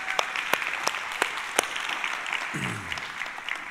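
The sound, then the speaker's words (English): An audience applauds fathers on Father's Day with steady, dense clapping, punctuated by several sharper, louder claps that stand out from the wash of hands, holding a fairly even level throughout. “Can we just give all of our fathers a round of applause?”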